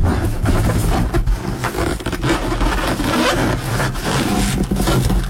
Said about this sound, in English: It's a balloon? Yeah. That is a balloon. You are right about that one.